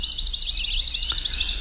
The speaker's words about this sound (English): It's the Dawn Chorus. That's in case you weren't able to get out and hear it yourself. Maybe you're having breakfast in bed this morning. The Dawn Chorus, a wonderful part of spring made possible in part by the wonders of migration